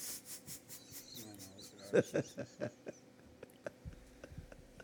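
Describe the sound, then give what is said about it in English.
A bird chirps in short, repeated calls outside a window, mixed with scratchy rubbing and clicking noises at the microphone. “That bird is gonna fly in this room.”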